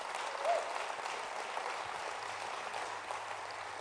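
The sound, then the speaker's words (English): A church audience applauding, giving the Lord a hand clap of praise in thanks for their pastor: steady, dense clapping from many hands that holds at an even, fairly loud level for the whole stretch, with no voices rising above it. “If you're thankful for your pastor, give the Lord a hand clap of praise.”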